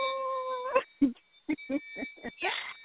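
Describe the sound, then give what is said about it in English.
A priestess bell rings with a steady, bright metallic tone that lingers. Its high ring fades slowly as a voice makes short bursts of sound over it. “I got to ring the priestess bell on that one.”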